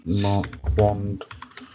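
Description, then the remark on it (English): Quick computer keyboard typing: a short run of crisp key clicks in uneven rhythm, following a brief voiced sound at the start, as someone looks up the film director Richard Marquand. “Apologies for the typing.”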